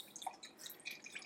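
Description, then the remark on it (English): Tequila being poured freely, without a jigger, into a container for a drink, a quiet trickle broken into bright little glugs and drips over about a second, with no voices. “Let's throw a little bit of tequila in it.”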